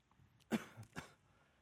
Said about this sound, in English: And if you've ever heard a dog cough, you know that it's like, it's awful.